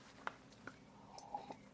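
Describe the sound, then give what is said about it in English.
Soft sipping of coffee: a few faint mouth clicks and a short, quiet slurp followed by a swallow, with no talking. “Excuse me, coffee sip there.”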